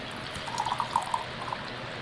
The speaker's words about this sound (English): So let's get a pour sound if we can. As I say, a dirty pour, just kind of...Dump it in that glass.